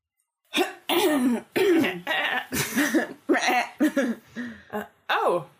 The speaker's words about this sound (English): I'm going to just go and stand next to him and clear my throat.